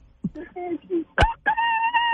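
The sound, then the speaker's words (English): A person imitates a rooster crowing, with a few short clucking voice bursts followed by a loud, drawn-out, high-pitched crow held at the end. “It landed on a rooster. Please imitate a rooster.”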